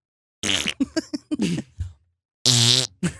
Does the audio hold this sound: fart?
yes